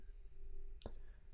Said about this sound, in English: I'm trying to look at how many letters you're typing. I'm just kidding.